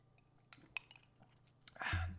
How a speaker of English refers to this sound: I'm going to take a sip of this.